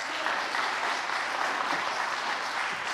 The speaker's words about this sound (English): So I'd like to invite Jim up, and let's go ahead and clap.